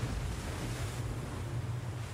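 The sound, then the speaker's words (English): Ocean waves crash steadily onto rocks below a balcony 40 feet above the water as the tide rolls in, a continuous, full roar with a deep low rumble underneath and a broad hiss of spray and wind, with no voices present. “I stood there as I watched the tide roll in and the beach disappear bit by bit as the waves crashed onto the rocks below.”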